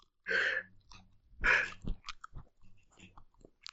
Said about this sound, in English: Why would you want to hear me chew? Oh, wait, that's ASMR, right? it's ASMR. I mean, Yeah. mukbangs have that too. I think they Now I'm ASMRing all up in your ear. That's me eating an orange.